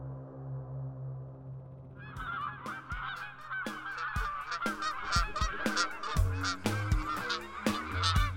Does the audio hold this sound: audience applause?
no